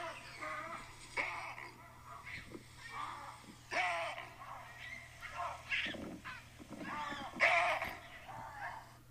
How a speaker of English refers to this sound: Oh, it's called the baboon bark. Yeah. Hold on, let me see if I can turn it on.